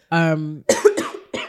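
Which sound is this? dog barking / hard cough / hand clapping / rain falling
hard cough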